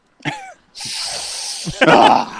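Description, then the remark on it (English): Airy sniffing through the nose: short breathy bursts, then a long drawn-in hiss and a rougher, louder snuffle at the end, with no clear talking. “As he's sniffing him right now.”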